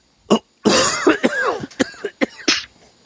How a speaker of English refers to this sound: Coughing all up in the microphone there,